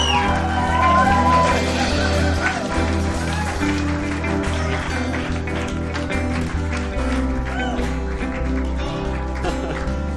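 Steady applause with scattered whoops and shouts from a crowd, running loudly for about ten seconds over sustained music with a low, pulsing bass.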